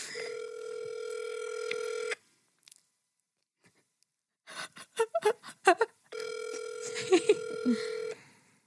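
A phone line rings on an outgoing call to Taco Bell: two long, steady, buzzing ring tones of about two seconds each, separated by a pause filled with faint clicks and a quick run of short beeps.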